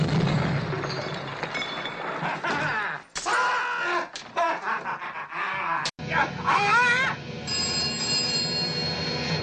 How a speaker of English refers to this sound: It's the phone. The phone is ringing.